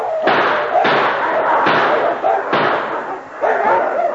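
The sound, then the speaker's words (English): Five sharp pistol shots, fired by a sergeant dropped to his knees at a pack of wolves, fire in quick, uneven succession, each loud crack trailing into a dense rumbling decay that fills the gaps before the next shot. “He dropped to his knees and opened fire at them.”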